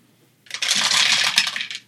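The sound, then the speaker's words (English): A handful of dice clatter together in a dense rattling burst for over a second before settling, fairly loud with no voices; many dice rolled at once for damage in a tabletop game. “Those are too many dice, bud. You need to take about 6 of those back.”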